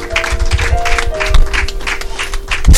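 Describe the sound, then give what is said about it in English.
An audience claps for Jesus in a dense, steady patter of many hands, while a faint sustained tone hums underneath and a few heavier low thumps break through. “If you are clapping, clap the more for Jesus.”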